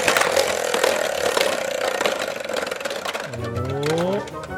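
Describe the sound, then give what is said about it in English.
A mystery prize wheel filled with random words spins to pick a word, with a fast, steady rattle of ticks and a loud mechanical whir. Near the end the ticking gives way to a voice sliding up and down in pitch. “So we're going to let this mystery wheel decide what the word will be.”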